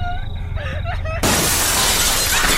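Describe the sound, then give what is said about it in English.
Glass suddenly shatters with a loud crash, showering a room with shards, followed by a sustained spray of breaking, tinkling fragments. Faint tonal, voice-like sounds come just before the break. “Suddenly, the room was bathed in a shower of shattered glass.”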